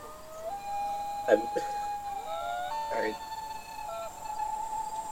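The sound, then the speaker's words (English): A loon gives a long, eerie wailing call, a sustained mournful tone that jumps up in pitch partway through and holds. Brief voices speak over it twice. “Spoilers, if you ever want to make something scary, just fucking put the loon's call on repeat.”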